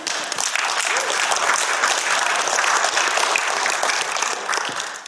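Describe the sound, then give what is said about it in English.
An audience applauds steadily, dense overlapping hand claps at a sustained, fairly loud level for several seconds before easing slightly at the end. “You can clap.”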